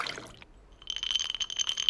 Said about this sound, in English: Glass, ice, pour.